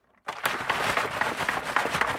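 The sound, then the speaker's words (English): Water sloshes and splashes inside a plastic bottle of water that is shaken steadily for about two seconds, making a busy, hissing, rhythmic rattle after a brief moment of silence. “You're shaking a bottle.”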